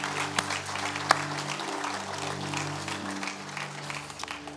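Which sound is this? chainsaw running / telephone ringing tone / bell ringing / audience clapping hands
audience clapping hands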